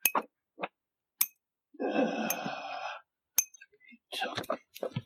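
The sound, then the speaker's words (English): A finger taps a metal spear blade several times, giving sharp, bright clicks, and one tap rings out for about a second with a shimmering metallic tone. No one speaks. “I'm just gonna take my finger and tap it against the blade of my spear.”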